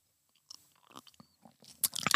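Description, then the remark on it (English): Sipping of 19 Crimes Martha's Chardonnay wine: a few small wet mouth clicks and smacks, then a louder airy slurp near the end, with no talking. “Of course, which I'm not a Chardonnay fan at all, but I just took a sip.”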